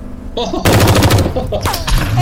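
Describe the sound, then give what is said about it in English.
A loud burst of rapid gunfire for an overwatch shot, a sound-effect volley of repeated sharp shots with a slight pulsing rhythm, starting abruptly and continuing for nearly two seconds, with faint voices underneath. “So go ahead and do your overwatch shot there.”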